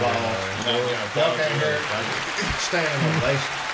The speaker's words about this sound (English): There we go. Yeah, we got applause.